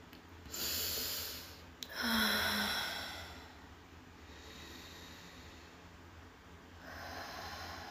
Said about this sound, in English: Like, taking deep breaths from the belly or from the chest, whichever feels better for you. Just breathe. And out with the mouth, with a sigh. Like, keep breathing that way.